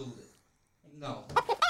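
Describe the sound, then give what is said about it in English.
A chicken clucking sound effect: several clucks in quick succession, short squawky bursts that rise to a loud, choppy flurry at the end after a brief pause, with some murmuring sound beforehand. “He's hitting the chickens.”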